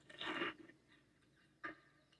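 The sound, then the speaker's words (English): Crisp crunching as someone chews a hard, crunchy Hot Cheetos snack cooked in a pan with cheese and egg: one loud extended burst of crunches, then a quieter pause and a single sharp crunch, with a faint final bite at the end. “So it's very, like, hard and crunchy.”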